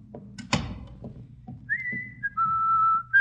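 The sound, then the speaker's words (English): A sharp thud or door knock, then Miss Brooks whistles a tune loudly and clearly in the hall right outside Daddy's office, holding steady notes that step between pitches. No one speaks. “Do you think you should whistle so loudly, Miss Brooks?”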